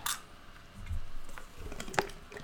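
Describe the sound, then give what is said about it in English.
Guinness beer glugs and fizzes as it is poured from a nitro can, a soft foamy gurgle with a few splashy pops, fairly quiet, with no one talking. “And yes, this is how you pour the Guinness into a can. Just straight up and let it come on down.”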